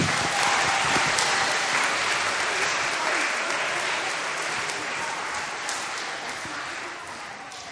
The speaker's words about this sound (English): Can we give all our volunteers a big clap?